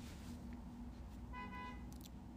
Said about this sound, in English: There's some loud cars outside. Another loud hotel.